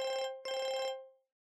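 A phone ringing tone as a call is placed from a desk: two bright, warbling electronic rings, a short one followed by a longer one after a brief gap, the second fading out with a lingering tail.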